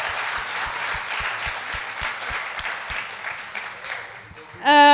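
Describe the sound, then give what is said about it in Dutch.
Sustained audience applause, a dense wash of many hands clapping at steady loudness, with a voice cutting in loudly over the last half second. “Zullen we ze allemaal een applaus geven? Should we give them a hand?”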